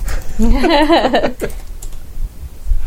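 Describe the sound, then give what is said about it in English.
Rapid, steady clicking of computer keys as someone types to look up a film's release year online, with a voice sounding briefly over the first half before the tapping continues on its own. “Oh, she's got a keyboard.”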